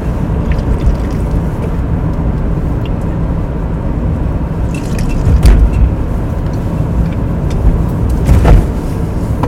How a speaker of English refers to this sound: Okay, this part is going to be a little bit dicey, I think. Just give me a second. I'm getting on the highway, that's why.